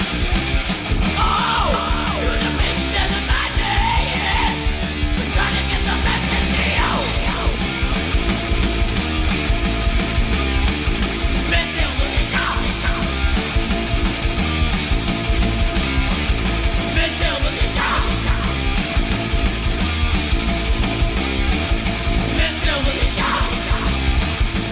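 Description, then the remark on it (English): A fast, loud thrash metal song with distorted, churning guitars, rapid pounding drums and shouted, aggressive vocals, playing at constant full intensity throughout. “So here on History in 5 Songs with Martin Popoff, here's our first song in The Birth of Thrash. Take a listen to this.”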